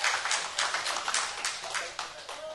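A crowd claps in a steady round of applause for a group member who shared a statement, a dense crackle of many hands that keeps going for a couple of seconds at even loudness.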